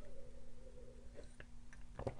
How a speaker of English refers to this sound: A little sip of tea. God, I love green tea.